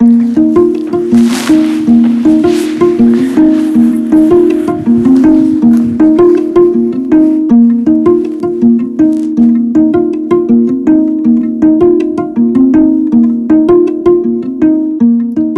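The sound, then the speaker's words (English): A playful river otter chirps and squeaks in a rapid, steady string of bright, harmonic calls that carries on without pause, with faint wet squishing underneath, recorded at night under a full moon at the Sun River Nature Center in Sun River, Oregon. “Special thanks to Gus the Swan, Luna the Eurasian Eagle Owl, and this playful little river otter for keeping me company.”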